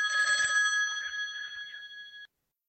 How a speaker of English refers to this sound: Hold on, see the phone ringing. I think bear with me, this will be back in a few minutes.